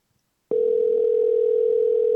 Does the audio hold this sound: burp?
no